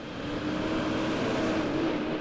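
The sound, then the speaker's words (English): Continuous traffic at the intersection of Preston Highway and Fern Valley Road at noon on a Thursday, with a steady engine rumble and tire hum as vehicles move through, loud and unbroken, with no voices. “At noon on a recent Thursday, there was steady traffic at the intersection of Preston Highway and Fern Valley Road.”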